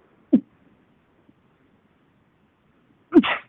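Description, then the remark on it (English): A single sneeze near the end: a brief vocal catch, a pause, then a sudden, fairly loud burst with a hissing spray of breath, with no talking. “Bless you.”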